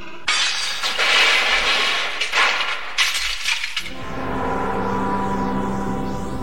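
A mirror smashes loudly, with a long crashing burst of shattering glass and several sharp impacts over a few seconds, followed by shards tinkling as the sound gives way to low music. The mirror smash is played by KJSC Radio.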